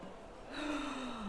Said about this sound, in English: Stop yawning. Did you not sleep last night?